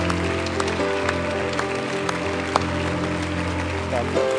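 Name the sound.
audience applauding and cheering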